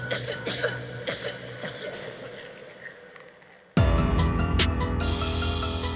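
A series of raspy coughs comes in short bursts, then a sudden loud wall of harsh, crackling static cuts in and continues to the end.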